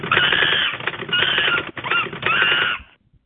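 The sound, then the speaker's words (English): Fast, busy typewriter-style clatter, a typing sound effect for the typing monkey, comes in four dense bursts with brief gaps between them, loud, then stops abruptly into silence. “All right, one more person to introduce, and that's the typing monkey.”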